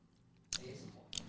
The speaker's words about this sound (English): I just like biltong. I fucking love it. Apologies for everyone who's getting that ASMR fucking chewing of biltong in the rear, but...